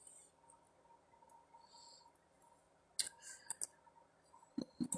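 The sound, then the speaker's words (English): Faint computer keyboard typing as the word Vatican is typed into an etymology search: a handful of sharp, quick key clicks in two short bursts after a few seconds of quiet hum, with no one talking. “Again, typing in Vatican in the etymology came up port.”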